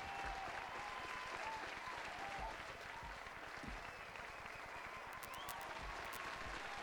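Sustained audience applause welcoming a man, a dense, steady wash of many hands clapping at even loudness for several seconds, with faint cheering or whoops rising above it.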